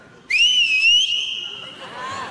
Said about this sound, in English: But, all right, give me one more whistle. Oh, no. Let her rip. Come on.